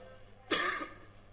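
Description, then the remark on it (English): A single short, rough cough bursts out, followed by a brief fading rasp and then quiet room tone. “Feel, even this cough, you will come out of it.”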